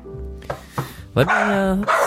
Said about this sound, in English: The barking will shut up.